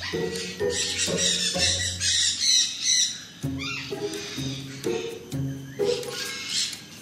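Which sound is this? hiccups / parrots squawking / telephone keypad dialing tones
parrots squawking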